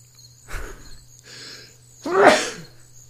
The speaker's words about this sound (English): Okay. Give me a second while I sneeze. Okay. It's coming.